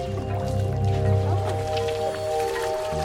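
A wet rag used to filter river water is squeezed and wrung, with soft squishing and water dribbling and dripping back down, over a steady low hum in the background.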